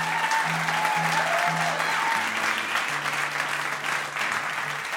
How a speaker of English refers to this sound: I think you should give them all a round of applause.